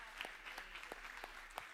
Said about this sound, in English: You can clap, because that's crazy.